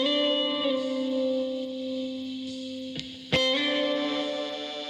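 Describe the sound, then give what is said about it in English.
A buzzy, distorted stylophone plays steady electronic tones within a song, broken by a couple of sharp clicks partway through before the reedy notes resume. No one speaks. “And there's the stylophone. Sounds like it's tapping out Morse code.”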